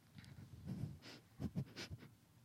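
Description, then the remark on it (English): A series of short, breathy sniffs into a microphone, coming in quick irregular bursts with soft hissy noise between them, fairly quiet and with no talking. “Why are you sniffing into the microphone?”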